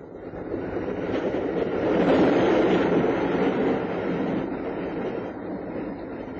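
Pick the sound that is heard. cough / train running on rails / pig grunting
train running on rails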